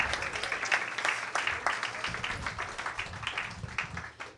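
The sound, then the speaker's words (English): A round of applause from a crowd for a performer making his debut after his song, dense overlapping hand claps forming a steady, fairly loud crackle that fluctuates slightly throughout, with a few murmured voices underneath. “Another round of applause for the Yop debuter,”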